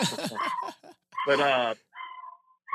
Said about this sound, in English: Sorry, my dog's getting all excited.